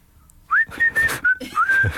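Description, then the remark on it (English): Someone whistles like a tradesman, a short, casual tune: a rising swoop into a few sustained and sliding notes, clear and fairly loud over faint background noise, with no talking. “What about whistling tradesmen?”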